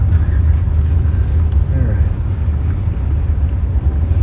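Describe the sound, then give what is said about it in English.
Heavy trucks rumble past, a loud, steady low-pitched drone of engines and tires that fills the whole stretch without pause. “That happens when there are big trucks over here.”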